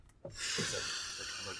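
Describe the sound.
A person makes a loud, drawn-out sniffing noise, a single long breathy inhale with a faint voiced edge, imitating someone sniffing intently at an elf.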